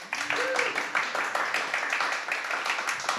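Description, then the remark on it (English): A round of applause from an audience as guests are introduced at an event, steady and fairly loud, with dense overlapping claps lasting a few seconds and a brief whistle or cheer near the start. “Yes, I love this round of applause.”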